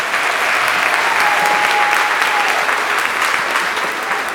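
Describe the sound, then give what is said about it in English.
A crowd at a school gathering claps steadily in a round of applause for First United Methodist Church, a dense, even wash of many hands at a loud level that holds throughout without fading, with a faint whistle-like tone drifting in briefly. “If you would, please give them a round of applause.”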